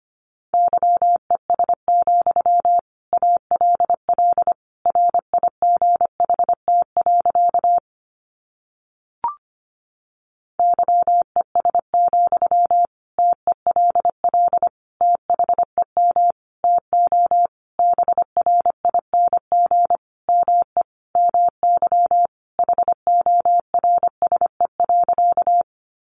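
Morse code practice sentences built from the top 500 words, sent at a brisk 25 words per minute: a steady mid-pitched beep keyed on and off in quick dots and dashes, with one short pause partway through. No voices.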